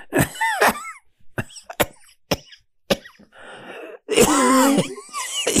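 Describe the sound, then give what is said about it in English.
A person recovering from COVID breaks into a harsh coughing fit, a rapid series of sharp coughs with raspy, strained breaths and wheezy gasps between them, ending in a long hoarse, groaning cough. “I don't even want to say the word because I'll start to cough.”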